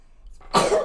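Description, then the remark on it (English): A single sharp sneeze bursts out after a brief quiet inhale, loud and breathy across a wide range, trailing off quickly at the end. “Yeah, I okay, sneezed.”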